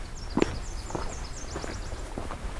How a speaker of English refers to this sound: It's Nashville Warbler.